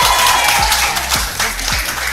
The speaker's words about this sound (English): And it's time for Brettonwood to take over the radio. One more massive round of applause for the Brettonwood High School debutantes,